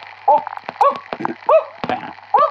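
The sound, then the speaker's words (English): A person imitates a dog barking: four short, loud barks spaced fairly evenly, with small clicks and mouth noises between them. “That's Neil Armstrong barking like a dog, everyone.”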